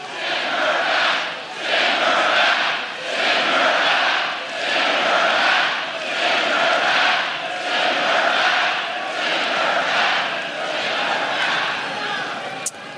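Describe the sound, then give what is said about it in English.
A large, loud crowd of supporters at a rally for the US president chants a short slogan over and over in a steady, pulsing rhythm, many voices shouting together for the whole stretch, calling for a member of the U.S. Congress to be sent back to Somalia. “For 13 seconds, the president of the United States stood there as a crowd of supporters screamed that he should send an American citizen, a woman who fled Somalia as a child refugee, now a member of the U.S.”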